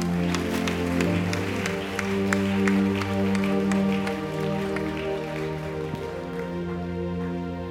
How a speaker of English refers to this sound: Clap your hands for Jesus, someone.